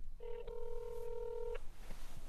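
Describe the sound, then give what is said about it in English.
Telephone keypad dialing tones as someone calls Spike: a short beep followed at once by a longer held tone, clear over a low background rumble, with no one speaking. “I've got to call Spike.”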